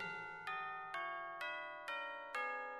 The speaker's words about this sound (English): Christmas bells, those Christmas bells, ringing through the land, bringing peace to all the world and goodwill to man.